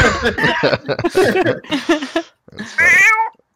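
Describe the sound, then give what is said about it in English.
A person gives a convincing cat-like meow, a single drawn-out wavering cry that rings out loudly right after a burst of lively chatter and laughter-like voices. “That was a real ass cat. Who did that? Which one of you made that noise?”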